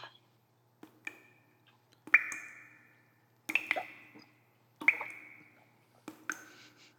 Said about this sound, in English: You come to hearing a steady drip.